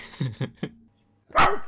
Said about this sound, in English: You got a woof. Oh, woof.